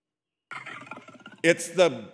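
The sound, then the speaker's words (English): A person imitates the low growl of a lion hunched over its food, illustrating the Hebrew word hâgâh, with a raspy, rumbling voice, ending in two louder, rising guttural bursts. It is fairly loud, with no other sounds. “It's the growl and the roar of a lion hunched over it.”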